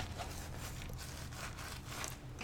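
A diaper crinkles and rustles in quick, repeated bursts of crisp, papery-plastic noise, fairly soft but continuous, almost like a shaken rattle. No one speaks.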